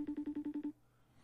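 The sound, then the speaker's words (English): An unanswered FaceTime call ringing: a quick run of about seven identical electronic tone pulses in steady rhythm, fairly clear, then cutting off into near silence. “Why don't people answer FaceTime calls?”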